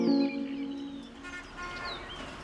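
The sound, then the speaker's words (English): Birdsong with several short, downward-sweeping whistles and quick chirps over a faint background; a brief low, honking tone sounds at the very start. “Birdsong may be music to our ears, but we live in a world where it is harder and harder to hear it.”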